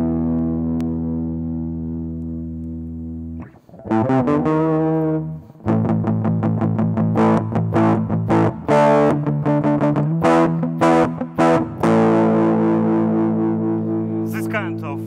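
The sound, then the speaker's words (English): An overdriven electric guitar rings out sustained chords and strummed hits, its tone shifting between darker, muffled passages and brighter, sharper ones. Loud, with no talking. “And let's try to use some tone. We can make it darker and lighter.”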